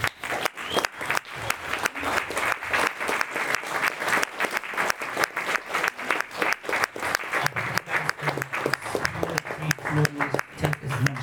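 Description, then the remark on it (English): Sustained applause from an audience at an event in the Shift creative space, a round of applause for the presenters, dense and steady clapping with scattered cheers and voices mixed in, holding at a fairly loud level for about eleven seconds. “And on that note, round of applause for the guys.”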